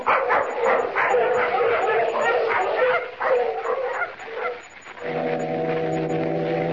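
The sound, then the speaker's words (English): A pack of sled dogs barks and yips excitedly in a dense, overlapping chorus for several seconds, then a deep, steady foghorn blast takes over near the end. “Come on, we'll get the dogs on.”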